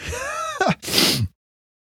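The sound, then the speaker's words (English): A single loud sneeze: a rising voiced intake of breath followed by a sharp, breathy burst that cuts off abruptly into silence. “I'm crying. I'm sneezing all over the place.”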